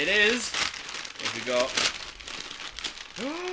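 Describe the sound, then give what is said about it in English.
Crinkling of shiny wrapping paper as a gift is unwrapped, a steady crackly rustle, with people talking over it. “So open that one. Were you about to open it for him? I kind of was on autopilot then. Ooh, shiny paper.”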